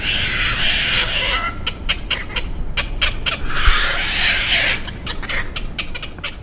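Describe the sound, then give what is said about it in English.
Night herons in the trees of Thames Street Park in Fells Point, near Baltimore's waterfront, give a late-night chorus of harsh, croaking squawks, many short calls overlapping in quick irregular bursts over a steady low rumble. “Night Herons Moving into Baltimore and Other Big Cities”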